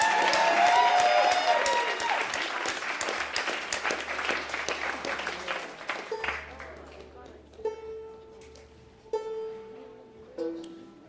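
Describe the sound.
A crowd applauds loudly with dense, rapid clapping that gradually thins and fades over about six seconds, followed by a few quieter voices and tonal sounds.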